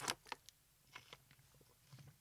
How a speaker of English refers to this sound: You know, I could actually hear you gulping it from there.